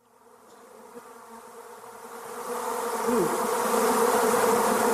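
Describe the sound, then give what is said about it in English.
A dense swarm of bees buzzes continuously, the drone building from moderate to loud over a few seconds with overlapping wingbeat tones and no voices. “I don't like that noise, but it reminds me of the busyness. We're like busy bees.”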